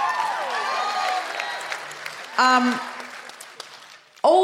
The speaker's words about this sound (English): Also, could we have a big round of applause?